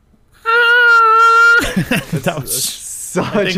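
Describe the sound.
A guitar slide is used to make a loud, buzzy, steady-pitched whine that lasts about a second, followed by people talking over each other and laughing.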